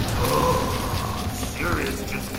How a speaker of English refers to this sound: A geyser of water erupted from the well and extinguished the fuse, stopping the explosion.